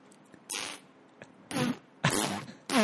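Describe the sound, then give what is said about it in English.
Four short, airy raspberry-like fart noises made with the mouth, spaced out with brief pauses, some breathy and hissing, others with a buzzy flutter, fairly loud. “I think it's because you manipulated your mouth into an actual asshole, and there's like this sphincter thing going on, so it does sound very airy.”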